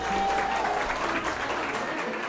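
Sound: audience applause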